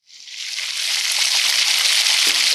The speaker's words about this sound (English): Slice a couple of room temperature russets into shoestrings. Coat with olive oil and season to taste. When the oven is fully preheated, pull the pan carefully from the oven and add the potatoes. And sizzle.